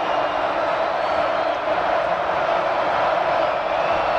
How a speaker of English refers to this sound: Crowd really letting this Colorado offense have it.